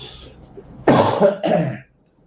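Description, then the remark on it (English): Two harsh coughs in quick succession, the first longer and rougher than the second, with no talking around them. “I'm going to take a moment to cough here.”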